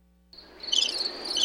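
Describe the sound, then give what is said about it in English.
A cricket chirping sound effect plays a steady, high-pitched trill that starts abruptly after a brief silence and continues for about a second, fairly loud with nobody talking. “I might have to play the crickets for that one.”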